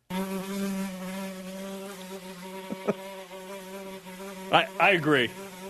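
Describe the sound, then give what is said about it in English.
A housefly, presented as The Fly from the vice presidential debate in Salt Lake City, buzzes steadily, its drone holding an even pitch, then swoops louder in a few quick rising and falling passes near the end. No one speaks. “Joining us now on BYU Sports Nation, The Fly, from last night's vice presidential debate in Salt Lake City.”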